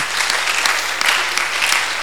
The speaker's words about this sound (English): Oh, you can clap for Jesus.